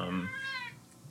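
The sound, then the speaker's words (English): A single drawn-out cat meow, rising then falling in pitch, clear, lasting about a second with faint room noise after it. “Hi, cat.”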